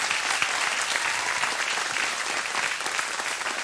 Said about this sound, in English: So let's give them a round of applause for that.